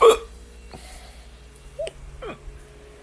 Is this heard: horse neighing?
no